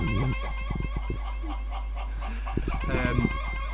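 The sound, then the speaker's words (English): A chicken clucks in agitated bursts after being hit, a quick cluster near the start and another squawking flurry toward the end, fairly loud, with no talking over it. “So, you hit the chicken for 8 damage.”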